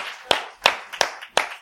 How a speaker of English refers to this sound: Clap your hands and you may be seated.